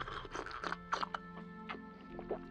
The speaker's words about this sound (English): Oh, this storytelling's thirsty work. Give me just one more sip here.